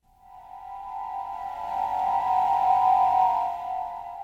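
Eerie early funk soundtrack music opens on a single sustained, buzzy mid-pitched tone that slowly swells louder and then eases back slightly, with no voices.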